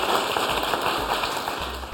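An audience applauds in a dense, steady wash of clapping that holds at an even level for the full two seconds, with no voices over it.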